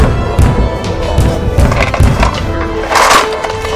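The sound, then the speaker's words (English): A wooden door is battered and forced open by attacking goblins: repeated heavy thuds and creaking, splintering wood, building to a loud cracking burst near the end, with no voices. “Sierra puts her spell on invisible shield just before Nora signals the others to back away from the door as the goblins at last force it and come through.”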